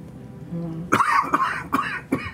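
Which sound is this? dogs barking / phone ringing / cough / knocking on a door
cough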